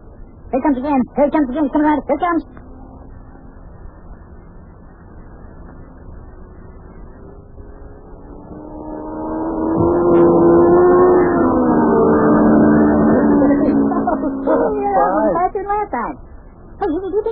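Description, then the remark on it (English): A voice speaks briefly, then an engine drone builds and roars past, its pitch sweeping as a racing car speeds around a speedway track before fading, with talk resuming at the end. “Hey, do you think you can get your car to go that fast?”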